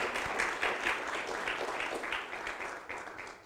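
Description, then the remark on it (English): A church audience applauds the Lord during a Spanish-English sermon, a dense, steady wash of many hands clapping that holds for a few seconds at moderate volume, with no voices over it. “Give an applause to the Lord.”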